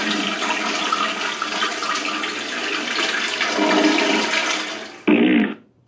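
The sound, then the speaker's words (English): A toilet flush sound effect: a loud, steady rush of swirling water for about five seconds, then an abrupt cutoff, followed by a short final gurgle as the water drains away. “Wouldn't that fart happen before the toilet, I hope?”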